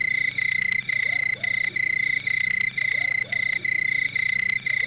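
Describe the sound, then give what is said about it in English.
Crickets, added as a sound effect, chirp in a steady, shrill trill, broken by short regular pauses, with a faint low background hum and no voices. The sound stays fairly loud throughout. “We'll put some crickets in there.”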